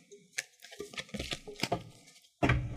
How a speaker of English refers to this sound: Shuffle and cut in three whenever you're ready.